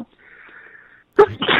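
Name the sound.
sneeze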